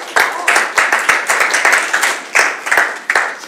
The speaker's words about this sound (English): Oh, let's be people that live out this plan of God. Can we clap our hands for the plan of God?